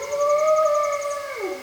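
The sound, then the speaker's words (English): A single long, sustained howl from a large pack of timber wolves with pups in a pine forest holds a steady pitch, then slides downward at the end, clear with a faint higher tone above it and no other voices. “The calls of a large pack of timber wolves and their pups echo through a pine forest.”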